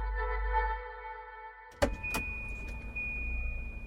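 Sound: car pulling up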